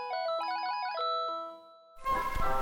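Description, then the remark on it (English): A mobile phone ringtone plays a bright, electronic classical melody in quick stepping notes for about a second and a half, then cuts off, followed by a loud burst of rough, noisy sound. “These days, we hear Vivaldi's Four Seasons everywhere. They're on mobile phones.”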